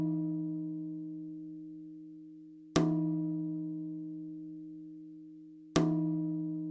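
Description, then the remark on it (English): An Aldi cola bottle is struck three times, about three seconds apart. Each hit gives a sharp attack and then a low, resonant, tom-drum-like tone that rings on and slowly fades. “and it's good because it sounds, I think that's the one that sounds most like a drum, specifically a tom, just dry when I recorded it.”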